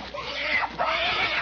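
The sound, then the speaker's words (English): A pet pig named Tiger squeals twice in quick succession while being given a bath in a tin wash tub, each cry a shrill, rising-and-falling wail lasting about half a second, loud, with no clear splashing audible. “she's giving the pig a bath. Yes, sir, she's got a tin wash tub, and she's down on her knees beside it.”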